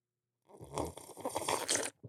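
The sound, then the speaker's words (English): A loud, wet slurping sip of tea from a dad tea cup, lasting about a second and a half with a gurgling, airy texture before cutting off abruptly. No talking. “Take a sip from my dad tea cup real quick.”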